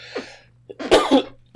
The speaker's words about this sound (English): A frog in my throat.